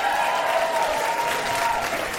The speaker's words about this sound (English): it's the classic thing where it's like, I'll wait till they're clapping, I'll wait in between.